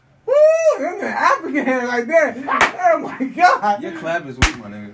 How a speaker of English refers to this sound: Hold on, we're going to see who can clap the loudest.